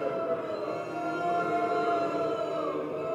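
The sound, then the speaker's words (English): A person imitates a cow with one long, steady, droning moo that holds a loud, buzzy tone for about three seconds without a break. “You don't sound like any cows I've ever heard.”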